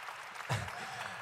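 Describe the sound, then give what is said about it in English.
An audience claps steadily for the performers who warmed up the crowd, a dense, even patter of many hands with a brief low thump partway through. The applause is fairly soft and no one speaks over it. “Let's give it up for them one more time.”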